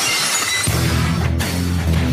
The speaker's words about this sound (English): You're just gonna get glass to just shatter behind you every episode.